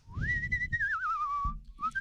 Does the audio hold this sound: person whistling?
yes